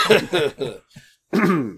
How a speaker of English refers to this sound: I, for the record, I will have it known that I was coughing, not laughing. Yes, it's all coughs.